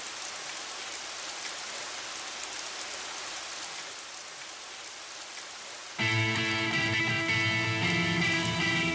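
Steady, hissing rain falls for about six seconds with no clear thunder rumble. Then music with sustained tones abruptly comes in over the rain.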